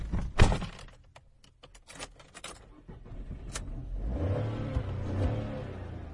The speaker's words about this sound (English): So I'm now going to shut the car door and start the engine, and you'll hear that, and it'll paint kind of a picture of me going on a journey. So here we go.